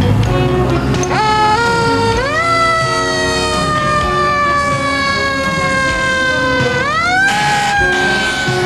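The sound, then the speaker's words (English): A loud emergency vehicle siren wails, its pitch sweeping up and holding in long rising tones, with the rumble of a heavy engine and traffic underneath throughout. “Flashing lights and the sound of sirens mean one thing, an emergency.”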